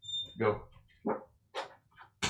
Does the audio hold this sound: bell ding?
no